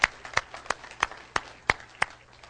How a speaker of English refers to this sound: Do we have any teachers here? Do we have any teachers in the house? Let's clap for the teachers. Woo!